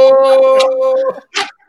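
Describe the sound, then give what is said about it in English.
A dog vocalizes: a long, steady whining tone followed by two short, sharp bark-like bursts. Voices may be faintly mixed in. “Barking. Was that who you're yelling at? Was your dog?”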